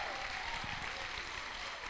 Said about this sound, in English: Yeah, give God a big clap of praise. Yes.